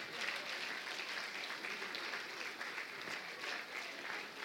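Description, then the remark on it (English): Sustained applause from a large church audience for the teachers and support workers called forward, a dense, steady wash of many hands clapping at even loudness throughout, with no voices standing out. “Keep clapping for them.”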